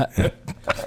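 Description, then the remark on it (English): A short, low burp, followed by a couple of brief guttural bursts within about a second. “Oh, wait, I need a better burp for that.”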